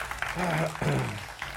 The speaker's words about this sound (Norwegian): Jeg vil at jeg skal gi en varm applaus til denne mannen, som til og med har skrevet bok om bygda deres.